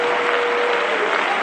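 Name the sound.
audience clapping hands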